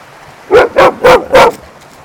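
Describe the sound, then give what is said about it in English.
A dog barks four times near a stream in a quick, even rhythm, loud, over a faint steady background hiss that could be running water, with no talking. “Hi, my dog.”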